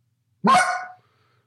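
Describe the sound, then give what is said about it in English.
A single loud, sharp cluck blown on a goose call: one short, raspy honking note lasting about half a second, dropping slightly in pitch, with silence before and after and no talking. “Okay, so now we have two different versions of the cluck.”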